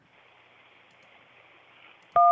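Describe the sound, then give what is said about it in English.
A low hiss of a phone line is followed by a sudden loud telephone keypad tone, a steady two-pitch DTMF beep that starts abruptly near the end and holds. “Oh my God, what was that? You hit like one.”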